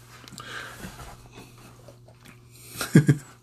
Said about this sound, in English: You don't need to be chewing up the bone. I'm just saying, Bubba. You don't need to be doing that.